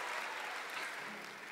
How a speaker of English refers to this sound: Would you also be kind if you were to give me a cheer if you are in a cohabiting relationship?